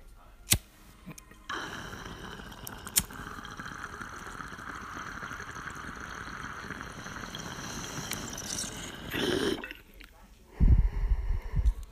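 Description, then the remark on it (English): Bong water bubbles and gurgles as a hit is taken, a steady, continuous rush for about eight seconds, followed by a brief pause and then a short, low, rough burst like an exhale. “I got my bong out.”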